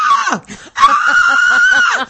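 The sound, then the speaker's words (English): A voice imitates a concert fan's shrill scream at a performer over the music: a short squeal that drops off, a brief gap, then a longer sustained high-pitched shriek, loud. “I'm going to pay my ticket price to scream at you over the music.”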